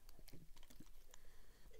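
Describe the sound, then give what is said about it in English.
Someone takes a quiet sip of a drink: a few soft, irregular wet clicks and mouth sounds over a low hum, with no talking. “Just going to take a sip.”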